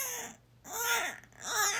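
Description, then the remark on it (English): A voice imitates a baby crying in three wavering, high-pitched wails, each rising and falling in pitch, separated by brief pauses. No words are spoken. “Drop in the comments below who has a better baby cry.”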